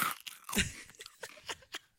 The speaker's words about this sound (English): I can hear you eating. That was loud, dude. That crunch was loud. That's amazing.